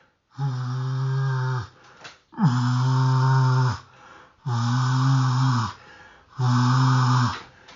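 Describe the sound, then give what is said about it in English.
Four long, buzzy honks from a goose call, blown with air pushed from the base of the throat rather than the lips, each held about a second and a half at a steady low pitch with a raspy, airy edge, separated by brief pauses. No talking. “Not a lot of voice inflection, but you'll hear the air pushing from the push point of the base of the throat, not the lips.”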